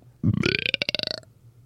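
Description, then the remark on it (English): A single loud, drawn-out burp, starting low and rising into a rattling, buzzy tone that pulses for about a second before cutting off into quiet. “Can you burp on demand?”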